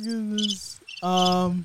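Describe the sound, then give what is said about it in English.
Cricket chirping plays as a short sound effect in two loud bursts separated by a brief gap, with bright, rapid chirps layered over a steady, buzzing drone. “You gotta you give him the cricket.”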